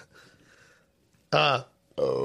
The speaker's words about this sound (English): That's a good burp.